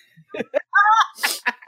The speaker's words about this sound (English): Hold on, I have to sneeze.